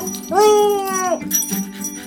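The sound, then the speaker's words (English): A big orange dog, Senator Something, lets out one drawn-out, high whimpering whine that lasts about a second, fairly loud, then trails off into quieter background noise. “I get some help from a big orange dog named Senator Something.”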